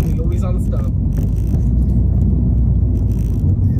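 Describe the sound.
Steady, loud low-end rumble of a car on the move, heard from inside the cabin, constant throughout with muffled road noise and a bit of voice early on.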